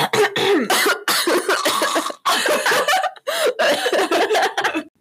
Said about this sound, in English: Okay, wait, hang on, I gotta clear my throat.